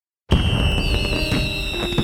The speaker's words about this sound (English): On the evening of July 4th, 1969, fireworks lit up the sky in Lakewood, Ohio, as thousands gathered to celebrate America's Independence Day.